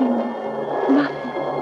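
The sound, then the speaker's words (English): A low, drawn-out wooden creaking and groaning of oars working in their rowlocks, with a brief rising squeal in the middle, steady with no voices. “I can hear men's voices calling. And the roar and creak of oars and rowlocks.”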